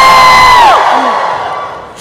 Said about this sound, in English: Don't forget how to wave your hands to get the crowd to woo. Woo!